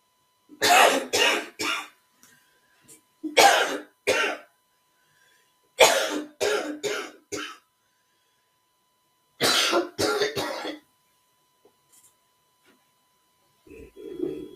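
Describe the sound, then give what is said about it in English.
A person who has been sick coughs in repeated harsh fits, loud, coming in four bursts of two to four coughs each with short pauses between, then a faint murmur of voice at the end. “The one thing that has not gotten away, or I have not gotten away from, is my coughing.”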